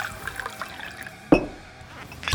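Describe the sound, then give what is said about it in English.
Liquid pours into a glass at a bar as a signature cocktail is mixed, with a sudden splashing gush partway through, then trickles and drips quietly before a short clink at the end. “Ah, cherished patron, you have before you an empty glass. Allow me to fix you up a signature cocktail.”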